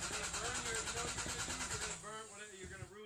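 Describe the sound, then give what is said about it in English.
A car engine cranks in a steady, rapid rhythm for about two seconds without catching as the driver keeps trying to start it, then stops as a person starts talking. “The car doesn't sound good.”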